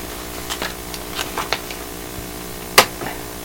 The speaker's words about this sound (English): Rustling around here, lots of noise with the paper going.